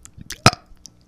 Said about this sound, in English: Okay, that's enough of that. I think I'm going to barf. Sorry for all the belching in the mic.